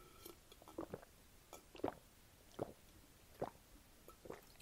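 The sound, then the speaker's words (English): Five or so wet, quiet gulps come in a steady rhythm about once a second as someone drinks, with no talking. “I said, let me take a sip, and I just took a bunch of gulps.”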